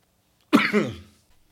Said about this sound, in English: Sorry, guys. I had a bit of a coughing jag there, so sorry for the edit.